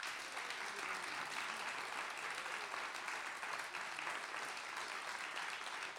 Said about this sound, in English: But what I would like you to do, just for Alaric there up in the box, is just to practice applauding, okay? So if I'm going to get you all to applaud now.